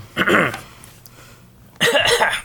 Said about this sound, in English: Cough, cough.